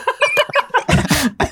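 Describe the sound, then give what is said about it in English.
A voice imitates scraping ice off a car: a quick run of short raspy strokes, then a longer, harsher scrape and one final stroke, loud with no other sounds. “No, you're scraping ice off your car. That's what that is. Exactly.”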